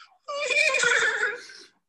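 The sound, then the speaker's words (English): A person's voice does a loud horse whinny, one sustained wavering neigh lasting about a second and a half before trailing off, with nothing else around it. “Are you concerned by what you heard there, that your friend that you've known for so long and the champ is morphing into a horse?”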